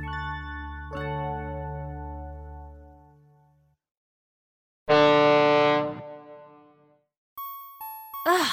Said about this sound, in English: Where is that beeping coming from? Okay, I'm so relieved to hear that it's not just in my head. I really wasn't sure.